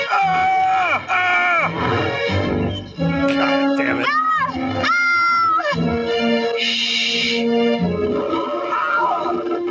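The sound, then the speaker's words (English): Four G.I. Joe members scream and wail at once as a giant anaconda sneaks up on them on a branch and attacks, loud overlapping cries that rise and fall in pitch, some shrill and drawn out, continuing without pause for about ten seconds. “them screaming with a primordial sensation.”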